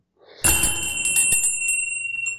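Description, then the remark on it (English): A bell rings loudly once to mark the end of a segment, its bright metallic tone lingering, shimmering with steady high overtones and gently pulsing as it decays over a couple of seconds, with no voices. “Okay, do you want to bell it? Yeah, let's bell it.”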